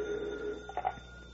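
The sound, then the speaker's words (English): A telephone rings quietly in an office in a steady electronic tone, with a brief burst of brighter ringing partway through and no one speaking. “I'll take it on the other phone, huh?”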